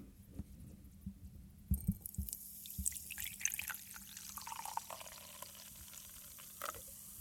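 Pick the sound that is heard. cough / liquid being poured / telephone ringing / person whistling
liquid being poured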